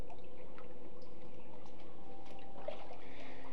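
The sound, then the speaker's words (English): Water sloshes and trickles steadily, with small splashes and drips as a woman wades into a baptismal pool for her baptism. It's continuous for a few seconds, and no one speaks. “If you want to come join me in the water.”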